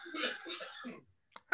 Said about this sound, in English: What kind of cough is that? Don't be coughing.